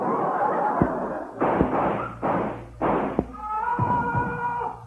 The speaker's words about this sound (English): What was that? Somebody's been shot just outside the door. Let's see who it is.